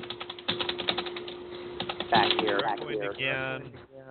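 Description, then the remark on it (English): Rapid, loud clacking of computer keyboard keys in quick irregular bursts, with a person starting to talk over the typing near the end. “Who's loudly typing on this airspace?”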